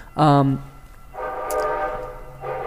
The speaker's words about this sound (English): See, this is the train trying to stop. It's the Bullshit Express.